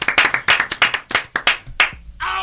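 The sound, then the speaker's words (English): A few people clap loudly in celebration of reaching 100 episodes, in a quick, slightly uneven burst of about ten claps, cut off by a short sustained buzzy tone at the end. “Let's clap it up for that, man.”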